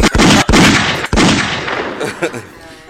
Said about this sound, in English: Ben, please press some gunshots for yourself, please.